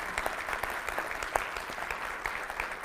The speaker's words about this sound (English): So many of them are here back in the back this morning. They're hanging out with us. So do we give them a round of applause? Or let's do that. Yeah.